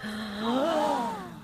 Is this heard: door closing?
no